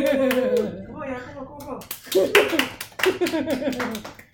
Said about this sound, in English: Insert hand claps.